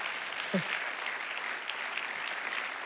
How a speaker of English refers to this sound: I need some adults to applaud that right now.